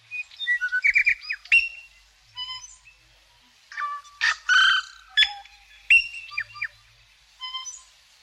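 A tui, a New Zealand bird, sings a varied, complex song of bright whistles, chimes, clicks and buzzy notes in quick irregular phrases, clear with no talking.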